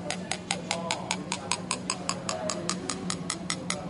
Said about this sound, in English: Now I'm going to put in a spoon of Alka-Seltzer now and stir it up. And now, I don't know whether you can hear that, but the pitch of the sound has gone right down.